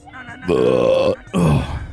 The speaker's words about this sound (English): Hold on, burp.